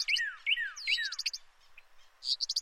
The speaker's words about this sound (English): So this is what that data, reconstructed, sounded like in 1998. To build a composite soundscape that broadly represents what it might have sounded like to be standing next to the surveyor as they were counting the birds on their patch in that year.